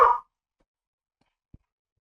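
A single short, sharp dog bark sounds right at the start, followed by near silence broken only by a faint low thump about a second and a half later.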